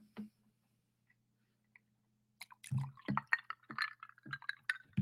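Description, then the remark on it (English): Poland Spring mountain water is poured into a glass holding coffee concentrate to make iced coffee, a burst of splashing and gurgling that starts after a quiet couple of seconds and continues unevenly to the end, with faint glassy clinks. “Then we're going to go about two-thirds water.”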